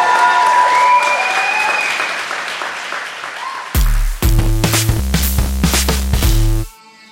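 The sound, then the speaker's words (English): Loud, sustained applause from a large audience at a live show in the York Theatre Royal, a clap for JB Barrington, with some cheering in the first few seconds, then music with strong bass beats joining in before cutting off abruptly near the end. “But a massive, massive clap off for JB Barrington.”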